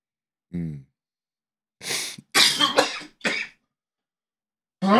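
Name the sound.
coughing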